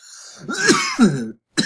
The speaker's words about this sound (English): Okay. I'm hearing coughing, but it doesn't sound like a painful drowning cough. It sounds just like a weed cough. So I'm going to say... I almost drowned in smoke.